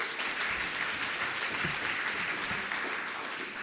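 A crowd applauds a song steadily, a dense wash of many hands clapping at an even, sustained loudness throughout, with no voices breaking through.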